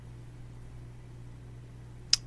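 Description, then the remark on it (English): An electric fan runs steadily, a low, even hum with a faint wash of noise underneath, quiet and continuous, broken only by a single sharp click near the end. “Is that the fan? Yeah, that's the fan. Wow. It's white noise.”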